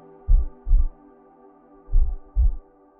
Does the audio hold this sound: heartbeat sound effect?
yes